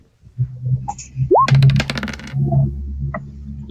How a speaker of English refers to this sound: Did that dice... No, it didn't. It looked like it bounced off the dynamic lighting wall. It's kind of funny. Oh, you can see that? I can see your dice roll, yeah.